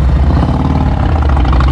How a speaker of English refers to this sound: Oh, it's a bunch of jerks and motorcycles. The most dangerous of all possible vehicles, the motorcycle. Because you've got the speed of a car and the safety features of a bicycle.